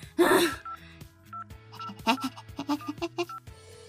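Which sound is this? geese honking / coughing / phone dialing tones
phone dialing tones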